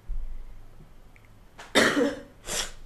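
A person with a cough gives two harsh coughs: a longer, forceful one followed by a shorter second cough, with quiet in the background and no talking.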